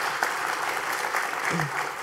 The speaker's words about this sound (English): I didn't mean for you to applaud him.